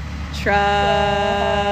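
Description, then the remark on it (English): A truck spraying water everywhere goes by: a quick rushing whoosh, then a loud, steady, buzzing engine drone with a strong tonal hum that holds to the end. “Truck. Oh, this truck's just, like, spraying water everywhere.”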